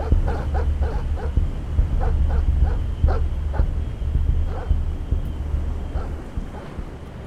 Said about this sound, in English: I hesitated, heard the hounds tearing the underbrush behind me.